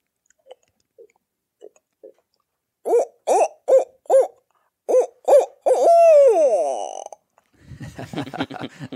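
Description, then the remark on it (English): A person imitates owl hoots with their voice: a series of short, low, rhythmic hoots, then a longer falling hoot, followed by rougher breathy vocal sounds, with a few soft clicks at the start. “And once I do that, then I can do two or three hoots like that.”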